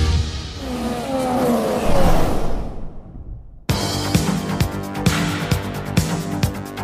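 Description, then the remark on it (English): A loud, dense roar of a crowd at the British Grand Prix motor race, with engine tones sweeping through it, swells for a few seconds and fades before cutting abruptly to rhythmic music. “Lando Norris leads the British Grand Prix from Max Verstappen and Oscar Piastri. You can hear the roar.”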